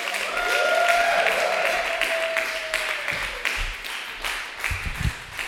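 An audience applauds steadily, a dense wash of clapping that stays loud for several seconds, with a long cheering whoop riding over it early on and a few sharper claps near the end.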